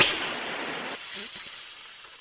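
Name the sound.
snake hissing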